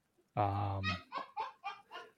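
One loud, drawn-out honk from a domestic fowl rings out, followed right away by a stretch of people talking.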